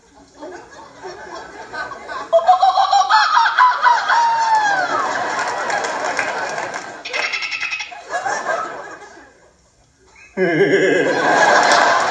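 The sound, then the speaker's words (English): A man's voice mimics a bird call, the call of a Colombian peckerhead, with loud squawking, warbling, fowl-like cries in a long burst, a brief pause, then another sharp, raspy outburst. “I know 17 different bird calls.”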